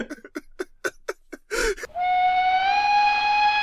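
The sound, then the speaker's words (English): A steam locomotive arriving at a station chuffs in a quick run of rhythmic puffs, then lets out a long, steady, piercing whistle that holds loud and clear to the end. “Train of Duskwall is now arriving.”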